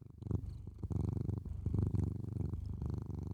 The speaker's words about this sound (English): He's purring. You want to purr for everybody? Cheer everybody up?